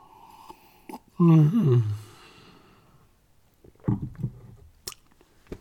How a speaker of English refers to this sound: So, wait, let me get a drink here first. Oh, I need a sip.